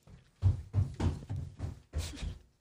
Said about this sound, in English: Boy, she weighs like 20 pounds, but she can stomp. Yeah, she can stomp like a fucking 80-pounder.